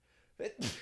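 A single sneeze: a short voiced intake followed by a sharp, bright burst of breath that trails off quickly, heard on its own with no talking.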